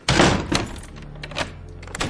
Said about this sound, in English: It was not Scrooge's habit to double lock the doors, but he did so anyway.